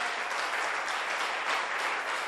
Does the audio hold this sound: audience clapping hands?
yes